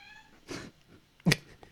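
A cat meows twice, a softer first cry followed by a sharper, louder one, with a faint high whine fading out at the start.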